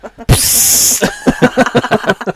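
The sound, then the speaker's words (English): A loud, sharp hiss bursts out as an apple-flavoured carbonated drink is cracked open and lasts under a second, then gives way to a series of softer, pulsing fizzy crackles. “Pretty fizzy.”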